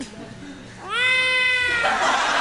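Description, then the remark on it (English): A single drawn-out cat meow rises and holds for nearly a second, fairly loud, then gives way to a breathy, noisy hiss-like sound. “Oh, me? I'm a cat.”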